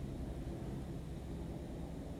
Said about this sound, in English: Can you hear the helicopter? They're coming for me. Seriously.